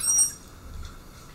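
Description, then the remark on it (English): A manatee's brief, high-pitched squeak picked up underwater by a hydrophone, followed by a low, muffled watery rumble. “But this is a hydrophone in water listening to a manatee's sound.”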